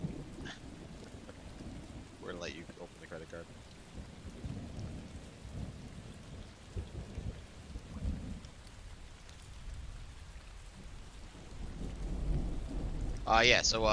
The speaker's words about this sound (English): You hear the rain. You hear the rain.